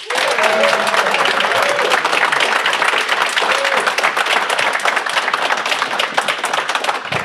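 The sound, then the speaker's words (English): A crowd claps steadily and loudly for several seconds, a dense wash of many hands applauding as a formal round of applause for guest Oren Eini, holding an even intensity throughout without any voices rising above it. “And with that, a formal round of applause for Mr.”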